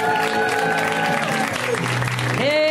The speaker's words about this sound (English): A round of applause for the Putterball Sisters, everybody.